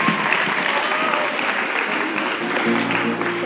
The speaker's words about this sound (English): So I hope you'll keep having these conversations, and thank you so much for having it. Can we give them a warm round of applause and say thank you to them?